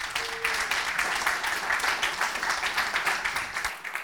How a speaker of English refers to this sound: Let's give Joe a round of applause here.